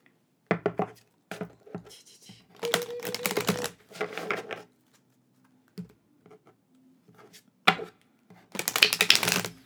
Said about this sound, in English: And then whenever I shuffle cards, I really try to focus on what I'm doing. I try not to be too distracted.